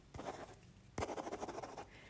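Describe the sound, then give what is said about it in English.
Quiet scratching of a pen across paper, two quick bursts of scribbled strokes with a brief pause between, as a signature is written on a sheet of paper for an x-ray referral, no voices. “Pop my signature on, okay?”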